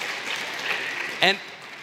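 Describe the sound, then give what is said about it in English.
An audience claps steadily in a dense, crackling wash of applause, and a single voice briefly calls out over it near the end. “You can applaud him.”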